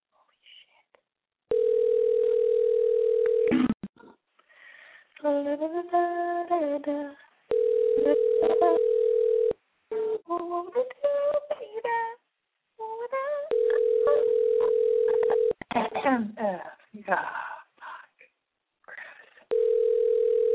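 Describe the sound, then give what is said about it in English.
An outgoing call's ringback tone, placed during the Boy Crazy Radio show, sounds four times, each steady two-second purr followed by a few seconds' pause, while a person talks in the gaps between rings. “I'm going to call this person, and if they don't answer and it goes to voicemail, I hope it doesn't say their full name and their number.”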